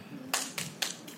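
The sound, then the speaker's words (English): Three isolated hand claps from the audience at a Lori Kilmartin stand-up show, on her album, answering her call for single parents to clap, ring out one after another with gaps between them, sharp and bright, the last ones trailing off, over a faint low hum with no other applause. “The first two claps were so enthusiastic.”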